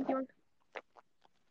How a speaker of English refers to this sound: Okay, not let's not chew on the zipper, you fuck. You fat fuck.